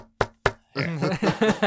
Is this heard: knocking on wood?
yes